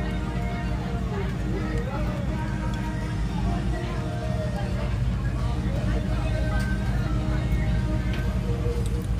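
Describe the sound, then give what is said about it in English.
A boat motors past with a steady, heavy engine rumble, while music plays from it, its melodic tones rising above the drone throughout. “This boat's going by with the music.”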